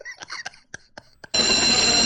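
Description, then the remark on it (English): A school bell goes off: a few short, evenly spaced metallic strikes, then a loud, steady electric ringing that holds shrill and unbroken to the end, with no voices. “Bell rings are leaving.”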